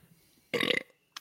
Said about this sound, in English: It's the best we're going to get. That burp is probably closer to to the pronunciation than I was.